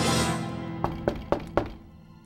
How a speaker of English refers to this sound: Then there was a polite knock on the door.